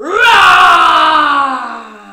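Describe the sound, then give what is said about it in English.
Voices let out one long, loud mock dragon roar, a sustained throaty cry that rises quickly, holds for about two seconds with a slowly falling pitch, then fades. “Do you think the dragon's gonna do a big roar? Let's hear your big roar.”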